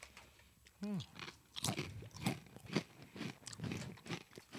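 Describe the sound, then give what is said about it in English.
Crunching of a crisp ridged snack being bitten and chewed, a steady series of sharp crackly crunches about twice a second, preceded by a brief hummed murmur of approval. “Good crunch. There's some bite.”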